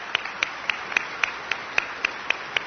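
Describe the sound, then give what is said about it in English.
An audience applauds Elizabeth Medicine Crow and First Alaskans, heard as steady, evenly spaced claps, about ten in under three seconds, moderately loud over a soft background hiss, with no talking. “I really want to take a minute also to give Elizabeth Medicine Crow and First Alaskans a applause.”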